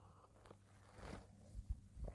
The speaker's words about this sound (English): Bear with, big sip time.